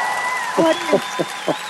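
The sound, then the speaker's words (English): An audience applauds Guy Kawasaki as he is introduced, in a steady, hissing wash of clapping, with a few louder bursts standing out over the continuous noise for under two seconds. “The audience goes mad.”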